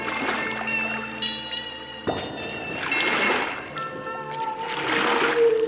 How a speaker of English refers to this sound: Paddles are splashing through water. I turn to see a skull crew racing to catch up with my rowboat on the starboard side.